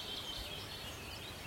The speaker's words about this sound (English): Really hoping to find a wood warbler today, so that's lovely. I'd heard they were back. There's a willow warbler, and there's the wood warbler in the distance.